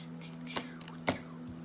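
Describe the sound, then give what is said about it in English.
A deck of tarot cards being shuffled, with two crisp slapping snaps and soft papery rustling between them over a faint steady hum. No one speaks. “Oh, messing up my shuffles. Let's get you a nice shuffle.”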